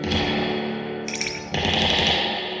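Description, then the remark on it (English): A loud, metallic crash of reverb springs, plucked or tapped directly in the reverb box of a Fender amp, rings out in a dense, wobbly wash, with a second sharp hit around a second and a half in, swelling the boingy, echoing rumble. “I think that that is either like plucking or tapping on directly on the springs in the reverb box of the Fender amp.”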